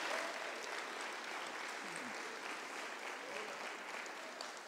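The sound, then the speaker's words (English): An audience at the 74th National Lectureship of the Churches of Christ applauds Brother Jeff Carruthers for organizing the event, a dense, even patter of many hands clapping at constant loudness for several seconds, with no voices standing out. “And he deserves a hand of applause from all of us.”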